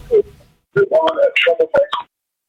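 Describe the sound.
The host's own voice plays back faintly over a phone line during a listener's call, thin and echo-like, in a brief burst of speech lasting a couple of seconds.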